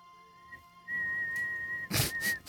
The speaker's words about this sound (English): Did you hear that? How'd that sound? Whistling? Yeah, what did it sound like? It sounded like shit.